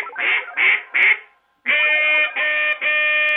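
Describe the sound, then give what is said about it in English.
A duck quacks loudly: three quick, raspy quacks, a brief pause, then three longer, drawn-out nasal quacks in a steady rhythm, with no talking. “Duck hunting season begins this week in the southern part of the U.S., and to kick off the event, the citizens of Stuttgart, Arkansas are celebrating.”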